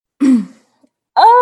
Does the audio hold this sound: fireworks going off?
no